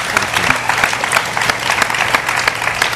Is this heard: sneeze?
no